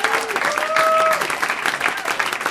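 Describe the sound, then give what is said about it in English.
An audience at a stand-up comedy show applauds loudly and steadily throughout as comedian Dean Delray comes on stage, a dense wash of clapping with a few short whistles rising above it near the start. “Big round of applause for Dean Delray, ladies and gentlemen.”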